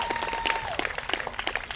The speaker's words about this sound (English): Can you guys clap it up for her?